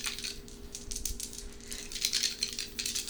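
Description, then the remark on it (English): Dice rattle and clatter steadily for a few seconds as a player rolls a dice pool in a tabletop game, a busy run of small hard clicks, with a faint hum underneath and no voices. “So reduce 2 dice from your normal pool.”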